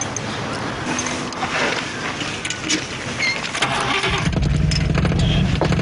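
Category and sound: vehicle, car engine starting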